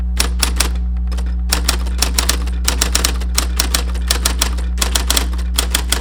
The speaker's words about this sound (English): Here's what I found. A Smith Corona manual. A Smith Corona Cornet Super 12.